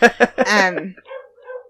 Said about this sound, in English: God, you could just hear my dogs while I'm talking.